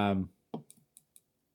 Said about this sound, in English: start typing shit.